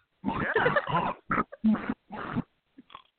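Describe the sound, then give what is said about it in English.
A person imitates a pig, giving a loud string of snorting oinks: one long grunting burst followed by several shorter ones, then a few faint snuffles at the end. “Because then you kept talking, and then I kept hearing the oinking, and I'm like, wait a minute.”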